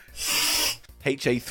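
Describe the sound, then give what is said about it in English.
A single steady hiss of aerosol deodorant, sprayed by a man onto his armpits, lasts just under a second, then stops as a man starts talking. “Great, he's spraying his pits now.”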